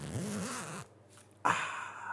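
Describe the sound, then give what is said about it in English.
A wavering voiced sound, a brief near-silence, then a loud, raspy burst like a clothing zipper being pulled, sustained for under a second. “And we get an audible zipper sound.”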